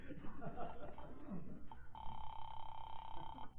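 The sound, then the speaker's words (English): A single steady electronic ring tone sounds on a telephone line for about a second and a half, following a brief stretch of muffled voices and background noise. “The least I can do is call and find out if he's been trying to get me.”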